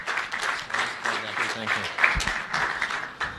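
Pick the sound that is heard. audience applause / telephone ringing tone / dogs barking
audience applause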